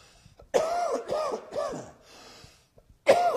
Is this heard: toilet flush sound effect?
no